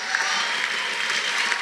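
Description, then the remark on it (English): A crowd claps to give God praise during a sermon, a dense, even wash of many hands with no pause, bright and sustained at a constant loudness throughout. “Oh, come on, somebody, clap your hands.”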